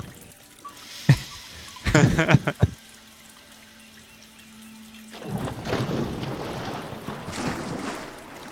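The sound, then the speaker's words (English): A water splash sound effect of someone jumping into a pool of water: a sharp hit and a cluster of loud splashy bursts, a short low hum, then a long rushing, bubbling wash of water that continues to the end. “Yay, sound effects. Jump into the water.”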